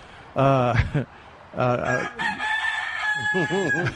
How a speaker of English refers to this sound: my brother used to raise hell about that rooster. Said, "You're not going to believe how loud that rooster is on the radio." It's pretty loud, and then the trouble is... that the show has a delay, so then the rooster hears himself 7 seconds later